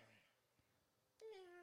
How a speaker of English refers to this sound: And shut up, you stupid cat! Mom, could you get rid of your cat? No, I don't want to get rid of my cat. I love our cat.